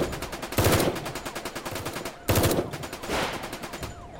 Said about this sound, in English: I could hear more gunfire ahead.